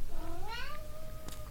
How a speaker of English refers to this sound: It's our cat. Oh, Nico. He's got some things he wants to add.